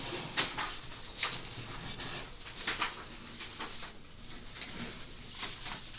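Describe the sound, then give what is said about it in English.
Objects being shuffled around, with irregular rustling scrapes and light knocks spread across several seconds, fairly quiet and with no one talking. “Shuffle some things.”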